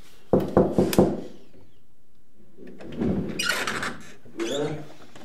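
Four quick, sharp knocks on the door of a room where guests are sleeping in a house, in an even rhythm, then a pause, then faint, muffled voices murmuring.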